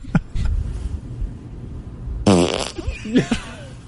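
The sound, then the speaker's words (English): A loud fart, recorded on a phone, erupts in a buzzing, rippling burst, then trails off into a short, high-pitched squeak at the end, with quieter rumbling before it. “Just a little squeak at the end.”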